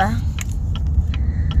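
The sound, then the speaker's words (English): A car's steady low engine and road rumble fills the cabin as it makes a U-turn on a road with no other cars, with a few light clicks and jingles scattered over the drone and a brief voice at the start. “And I have to make a U-turn, so that's what sucks. But there's no cars, so I can actually make this U-turn.”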